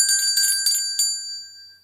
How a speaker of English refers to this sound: Great. You rung that bell because you didn't have any setbacks.